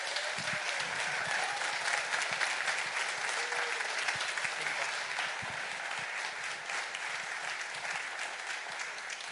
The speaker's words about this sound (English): But would you just clap for them and welcome them as they come?